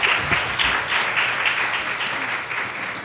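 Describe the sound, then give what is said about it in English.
An audience claps steadily for the women speakers of a panel for about three seconds, a dense, even wash of many hands with no voices rising above it. “I think they deserve a great round of applause.”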